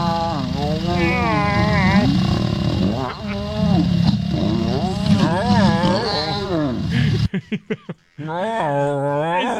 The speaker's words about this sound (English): Is that a pleasurable noise out of the lion? I think the lion seems like it's confused. Like the lion's never felt this way before, and it doesn't know what to do.